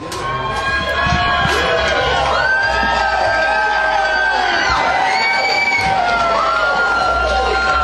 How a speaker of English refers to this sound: As you hear the crowd maybe in the background, the band seemed like it just took their stage.